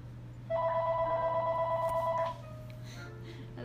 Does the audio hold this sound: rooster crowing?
no